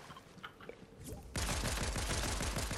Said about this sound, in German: Pass auf, da hinten wird gerade geschossen.